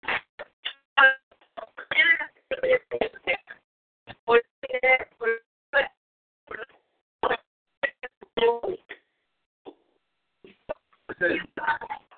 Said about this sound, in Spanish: Se escucha cortado, entonces yo creo que vamos a tener que...